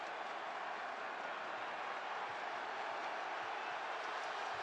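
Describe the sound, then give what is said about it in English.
A steady, dense roar from a large basketball arena crowd during a Toronto Raptors free throw against Chicago holds at an even level throughout, a continuous wash of many voices with no clear individual words or pauses. “Crowd trying to impact the youngster, misses the second one”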